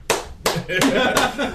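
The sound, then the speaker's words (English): Four slow, evenly spaced hand claps, loud, each ringing briefly before the next, with faint vocal murmuring in the background. “if all it took was clapping to get your ass off this island.”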